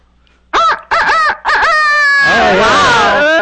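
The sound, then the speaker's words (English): A person imitates a rooster's crow, loud: a few choppy rising syllables followed by a long, strained, wavering held note, like a cock-a-doodle-doo done by voice. “I like to imitate roosters, too. When they crow, I crow back sometimes.”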